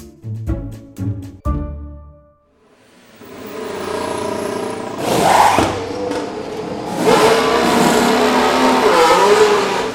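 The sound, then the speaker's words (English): A few short, sharp mechanical whirs, then a Formula 1 race car engine roars up loudly during a pit stop and keeps revving, surging and rising in pitch, with no talking. “During another lap, he makes a pit stop that takes only seconds.”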